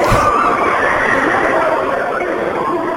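A dense, unbroken wall of eerie screaming and wailing voices, loud and chaotic, swells together with a harsh hellish roar throughout the whole stretch.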